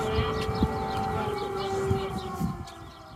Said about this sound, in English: Check out how people react to the siren.